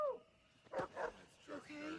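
A dog gives a couple of short, quiet barks in quick succession, followed by a longer, higher-pitched whining yelp. The sounds are faint.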